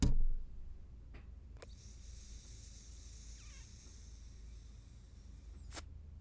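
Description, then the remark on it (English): Someone draws on a vape: a steady, airy hiss lasting about four seconds, opening and closing with soft clicks, with no talking. “Until the next one, hit your little vapes one last time. I'll hit mine, and cheers.”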